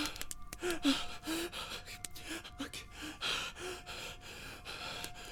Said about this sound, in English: Then he unlocked the door, threw the door open, jumped inside, slammed the door behind him, and stood there, panting, in an absolute mess.